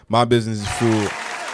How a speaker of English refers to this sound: My business is fueled by you guys. So let me give you guys a hand clap.